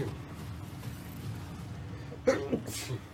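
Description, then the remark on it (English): A single sharp sneeze from a man with allergies near the end, a short voiced catch followed by a breathy hissing burst, rising over a low, steady background rumble. “bless you, sir. Thank you.”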